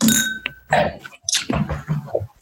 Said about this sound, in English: I'm drinking out of this beautiful Riedel wine glass. Cheers. I want to raise this toast for positivity and for understanding.